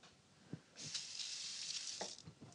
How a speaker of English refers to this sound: Let me wash my hands.